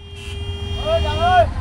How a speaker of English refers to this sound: It's high tide in Cox's Bazar, and there's a traffic jam on the beach. The lone road that leads south out of Cox's Bazar to the sprawling new refugee camps is closed for repairs, so all the traffic has been diverted onto the gray sand beach.